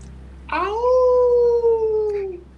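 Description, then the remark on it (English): A person imitates a wolf howl: one long, loud howl that swoops up, holds a steady wavering tone for nearly two seconds, then slides down and fades. “It's so cool that you always make that wolf sound, by the way.”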